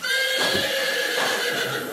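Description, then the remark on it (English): A female horse gives a loud whinny that stretches across the whole moment, a wavering high-pitched neigh with no voices around it. “And let's take a look at this horse.”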